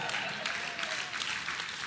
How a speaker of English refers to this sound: Less and less clapping as I continue with this pattern of preaching.